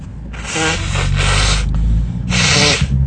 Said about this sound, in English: so I can blow my nose on a podcast.